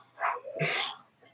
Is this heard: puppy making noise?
yes